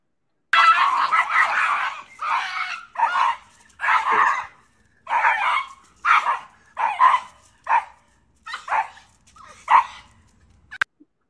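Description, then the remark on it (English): Leash-reactive dogs arriving for a five-day live leash reactive training course bark in a rapid, agitated string of about a dozen loud, sharp yaps, some with a whining edge. The barks come close together and fade slightly toward the end, with no talking. “these are the dogs that are coming in for our leash reactive course, which I'm going to show you about.”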